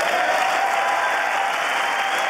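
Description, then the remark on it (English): Sustained applause from Democrats in the chamber during President Biden's State of the Union address, a dense, steady wash of many hands clapping at an even loudness throughout, with no voices standing out. “At times stoic as Democrats applauded the speech.”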